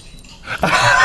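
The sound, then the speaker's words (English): A family labradoodle in a video clip being played: after a quiet, faint start, it lets out a loud, rough vocal sound that surges in around halfway and carries on to the end, with no talking. “This is the family labradoodle.”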